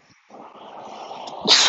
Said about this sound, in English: Sorry, I need to sneeze.